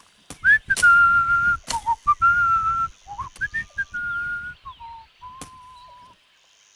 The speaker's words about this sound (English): He whistled as he cut.